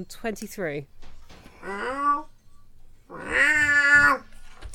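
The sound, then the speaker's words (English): A person imitates a cat, giving two drawn-out, wavering meows, the second longer and louder, after a brief burst of voice at the start. “Can I minor illusion the sound of a cat?”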